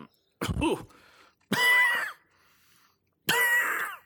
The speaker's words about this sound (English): Unrelated coughing. Yeah, just I got some quality stuck in my throat. I had to get it out.